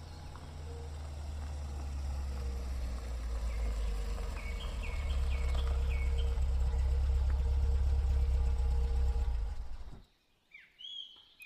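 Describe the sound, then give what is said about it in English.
A troubled car engine idles with a heavy, steady low rumble for about ten seconds, then cuts out abruptly. Faint bird chirps come through above the noise and in the quiet afterward. “Car trouble?”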